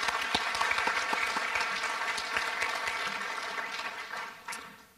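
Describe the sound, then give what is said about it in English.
A crowd applauds steadily, a dense wash of many hands clapping at once, sustained for several seconds before gradually thinning out and fading toward the end. “Let's give a round of applause for Caitlin.”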